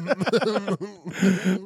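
A short burst of voiced murmuring gives way to a harsh, breathy, fairly loud cough, heard once near the end.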